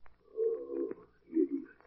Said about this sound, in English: What's the matter with our parrot now?